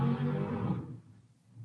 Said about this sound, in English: What the fuck was that? That was like a car, like four blocks. Where my house is located and where this room is located, uh-huh. It has to go through another house, and that's where the road's at.